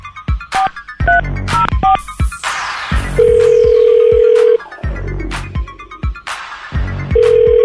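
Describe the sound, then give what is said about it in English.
Electronic phone tones of an outgoing call: a quick run of rising dial beeps, then long steady ringback tones repeating with pauses between them, loud, with no one speaking. “If he's not hiding under a bush or in a hole or something, I'm going to try to get him on the phone in just a little bit. Going to give him a call.”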